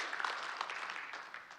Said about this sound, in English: Yeah, you can clap for God. I hope that's for God.